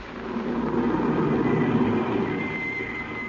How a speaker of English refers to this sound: And suddenly, a car drove up.